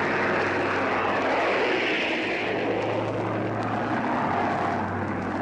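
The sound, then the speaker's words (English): Loud, steady drone of propeller aircraft engines passing low overhead, just clearing the ship's stack, a dense continuous roar with a deep humming undertone that swells slightly and then holds, no voices. “Now planes are going overhead.”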